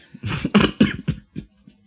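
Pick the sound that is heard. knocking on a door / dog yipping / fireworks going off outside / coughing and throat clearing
coughing and throat clearing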